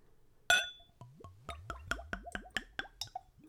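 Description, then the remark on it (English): A glassy clink, then whiskey glugs from a freshly opened bottle into a clean Glencairn whiskey nosing glass in a quick, steady series of rising, hollow gurgles, about ten in a row, with no one speaking. “Let's go for a pour.”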